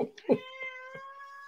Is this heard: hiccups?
no